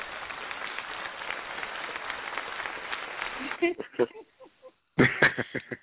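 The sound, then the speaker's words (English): On a radio call-in show, an applause sound effect of a dense wash of crowd applause fills the first few seconds, steady and fairly loud, then cuts off as voices start talking in short bursts. “Standing ovation. We got the applause, too.”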